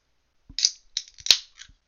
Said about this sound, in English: Sorry, cracking open a Bang Energy here. Purple Haze, my favorite flavor.